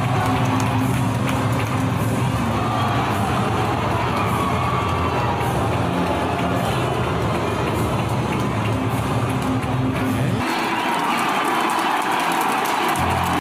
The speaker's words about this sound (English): So you heard a little cheer for Paul McCartney, boo for LeBron, and then Bradley Cooper, who's a big Philadelphia Eagles fan, got the biggest pop.